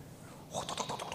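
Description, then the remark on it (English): A quick burst of typing on a computer keyboard, a rapid run of crisp clicks starting after a brief quiet moment and continuing steadily to the end. “And you're typing out your thoughts about someone else's thoughts who really doesn't give a rip and can't make any difference or any change in what's going on.”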